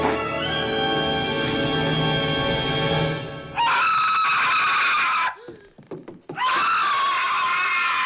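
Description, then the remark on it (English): A man screams loudly and shrilly, as Marv the burglar in a film when Kevin puts a tarantula on his face: one long sustained cry followed by two more frantic bursts of screaming separated by a brief, breathy pause. “And Marv the Burglar from the same film when Kevin puts a tarantula on his face.”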